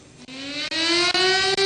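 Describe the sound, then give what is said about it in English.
Sirens blare during a moment of silence at a memorial ceremony for the victims of the 1937 Nanjing massacre: a loud, sustained siren wail with a rich, buzzy tone that climbs slowly and steadily in pitch, broken by a few brief dropouts. No one speaks. “The national flag flew at half-mast, the national anthem was played, and sirens blared as participants observed a moment of silence.”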